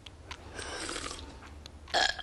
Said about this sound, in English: We're having a burp contest, Mom.